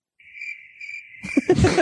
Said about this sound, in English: Fucking crickets.